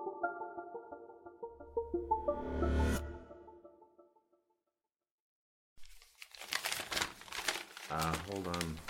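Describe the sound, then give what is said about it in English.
After a brief silence, a piece of paper crinkles and rustles in a dense, crackly burst as it is crumpled and handled, with a voice speaking briefly over the handling near the end. “Second, I've got to get this piece of paper.”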